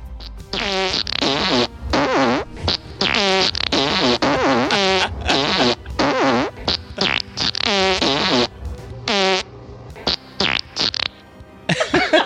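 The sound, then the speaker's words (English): A rapid series of loud fart sound effects, recorded in real time, some short and sputtering, others drawn out and wavering in pitch, overlapping and following one another almost continuously like a chorus. “Wow. That was like a chorus. God, farts.”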